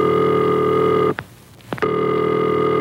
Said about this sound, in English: And this is the ringing signal.